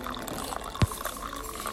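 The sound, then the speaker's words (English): Coffee pours steadily into a cup, a soft continuous liquid trickle with one brief clunk partway through. No voices. “Coffee ASMR. You know what happened? Pouring that coffee.”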